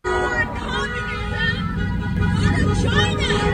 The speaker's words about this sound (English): Now, I don't know if you could hear that among the honking horns as the protesters were trying to force the healthcare workers to get out of their way.